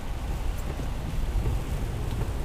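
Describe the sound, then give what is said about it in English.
Steady rain hisses over a deep, constant road rumble from inside a car being driven to work, an even wash of noise with no voices. “Well, I'm not saying to be ultra aggressive in the rain here, but if you're in the left lane, people are behind you.”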